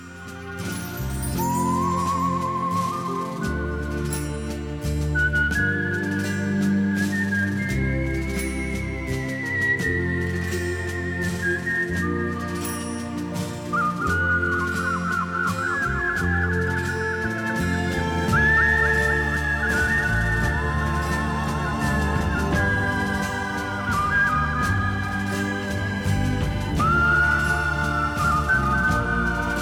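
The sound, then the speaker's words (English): A British man whistles a slow, lilting folk tune, clear, over a full instrumental backing with steady bass and chords throughout. “That's … whistling the Skyboat song.”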